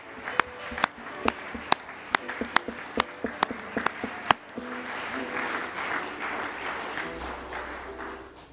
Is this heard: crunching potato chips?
no